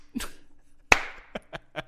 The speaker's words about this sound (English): I hope the mic picked up my slow clap.